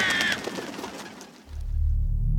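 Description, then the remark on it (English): A flock of crows croaks in a busy, overlapping clamor, with one sharp call standing out at the start, before the cries fade beneath a low, steady rumble. “In this deafening rustle, we could now distinguish the croaking voices of the crows.”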